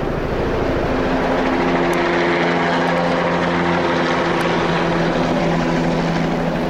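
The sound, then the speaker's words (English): A helicopter equipped with spray tanks and nozzles roars loudly overhead, spraying herbicide over a mountain, its steady engine drone and thudding rotor filling the air with a constant, powerful hum and no voices. “You would suddenly hear the thunderous roar, and the helicopter comes up and over the mountaintop and hovers.”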